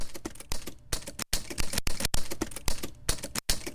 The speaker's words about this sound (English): And then I ran that recording through the OP1 and sort of quantized it to the beat, so it's almost like this little lead-in drum fill made out of typewriter.